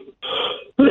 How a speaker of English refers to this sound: Gesundheit.